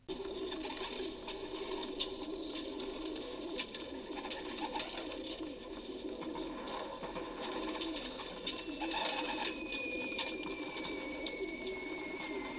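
A flock of pigeons cooing steadily together, their soft, overlapping burbling calls filling the background continuously, with a faint thin whistle gliding downward near the end.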